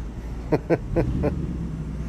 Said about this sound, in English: Oh, there's a big, loud truck about to go through.